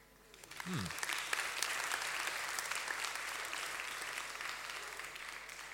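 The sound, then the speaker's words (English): An audience breaks into applause for volunteers who serve, including those handling the technology, swelling within the first second and holding steady as a dense, continuous patter of many hands clapping, with a brief voice audible at the very start. “You want to clap them? You clap them.”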